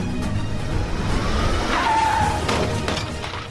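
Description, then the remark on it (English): Tires squeal in a brief skid as a red car and a blue car compete in a car soccer game with a giant inflatable football, over a constant rumble of car engines and scraping, with a sharp clattering impact, loud, with no one speaking. “So they're doing all these sports with cars, and this is one of the games itself.”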